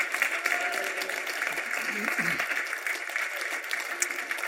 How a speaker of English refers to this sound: And some of it, yeah, go ahead and give God a hand clap this morning.